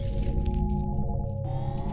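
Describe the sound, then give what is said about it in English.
A car key fob chirp as someone tries their keys: a steady, mid-pitched electronic tone with layered harmonics holds for about two seconds over a constant background hiss, with no one speaking. “Let me try my keys real quick.”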